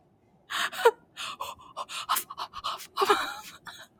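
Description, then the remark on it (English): A voice imitates rapid, breathy huffing, a string of quick airy puffs in an uneven rhythm, the sound a man makes when eating something hot. “When he eats something hot and he does that huff, huff, huff, huff, huff sound.”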